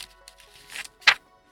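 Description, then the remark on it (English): Paper pages of a sketchbook full of doodles flap close to the microphone: a soft rustle builds, then one sharp, crisp flap stands out before quiet returns. No one speaks. “I wonder if you can hear that. All the flapping of paper.”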